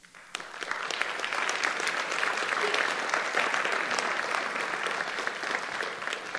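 A church audience claps steadily and loudly for volunteers who serve the kids, a dense, sustained wash of many hands that begins after a brief quiet moment and holds evenly throughout without fading.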